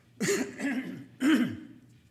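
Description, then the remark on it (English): A person clears their throat and coughs in three rough bursts, fairly loud, with brief pauses between them and no talking. “I'm going to have to resort to my cough drops.”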